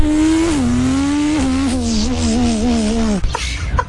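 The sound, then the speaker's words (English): A voice imitates a 2023 Formula 1 car engine, a loud, high-pitched sustained whine that wavers through gear-like pitch steps and drops before cutting off, with no other sounds. “2023 F1 car.”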